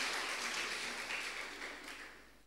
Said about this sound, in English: She may not be here, but we can clap for her. Amen.